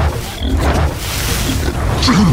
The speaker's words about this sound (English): So that means... I can use this pepper to make the whale sneeze. I hope I have enough. Stand back, kid. Time to clear some sinuses. I just need to reach up to the blowhole and... Hold on tight, kid. She's got the sniffles.